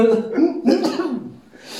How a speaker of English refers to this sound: God damn, I hate sneezing. Fuck, I hate sneezing.